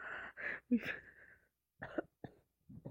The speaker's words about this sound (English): Sorry, I'm sorry. Phlegmy. I wasn't expecting to cough.